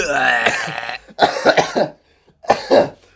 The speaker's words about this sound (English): I've been coughing up lungs all day. I didn't know I had this many lungs.